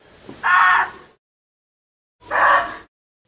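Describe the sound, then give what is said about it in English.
Two loud, harsh barks from a muntjac deer, its alarm call, separated by a pause of over a second, each a short rasping call with strong mid-range energy and no talking over them. “The muntjac is sometimes called the barking deer because of its alarm call. This is what a muntjac sounds like.”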